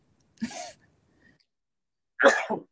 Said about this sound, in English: I need to sneeze. Okay. Bless Bless you.